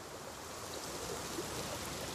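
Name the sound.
flowing river water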